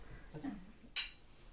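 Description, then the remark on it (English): Glasses clink together once in a toast, a sharp, bright ring that fades quickly, after a faint low murmur. “Cheers to that.”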